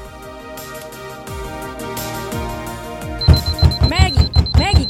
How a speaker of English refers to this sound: You left your phone in the living room and your alarm won't turn off. Get up! I don't care if you're bailing on work today. Just turn your freaking alarm off!